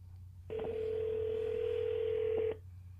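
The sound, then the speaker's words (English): A single steady telephone ringback tone from an outgoing call on the third attempt sounds for about two seconds over a hissy phone line, then cuts off as someone picks up, leaving a low background hum. Nobody speaks. “Somebody picked up the phone.”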